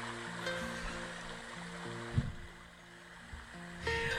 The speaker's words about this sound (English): You amazed me for a second. I thought real magic was happening. It's a different babbling brook. I thought real magic was occurring because I had no idea how you were doing that.